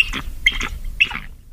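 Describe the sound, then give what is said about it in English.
A bald eagle gives three quick bursts of high, thin chirping calls, fairly clear, with short gaps between them and no talking. “Here's an actual bald eagle.”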